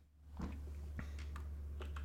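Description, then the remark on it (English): Several soft, irregular key clicks from someone typing on a computer keyboard, fairly quiet, over a steady low electrical hum with no voices. “You just didn't think through with what you were typing.”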